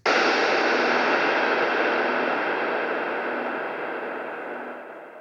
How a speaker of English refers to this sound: I liked how the whisper turned into a really long reverb tail, which then turned into white noise. Actually, I called the first part pink noise, and then it went higher up and sounded more like white noise. Here's what I called the pink noise.